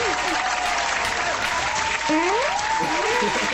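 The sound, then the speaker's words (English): Sustained studio audience applause welcoming a guest bass player, a dense, steady wash of clapping at full volume, with a few rising whoops or whistles cutting through near the end. “Well, I like letting the applause go long today.”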